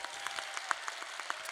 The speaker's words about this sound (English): a round of applause for every poet that graced this stage tonight. As well as a round of applause for you, audience. It takes a lot to sit and welcome into your hearts a lot of emotion. So a round of applause to everybody in this building.